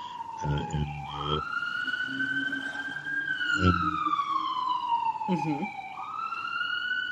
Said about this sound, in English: You have sirens there.